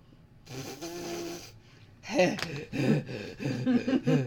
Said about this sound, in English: The heavy fucking breathing.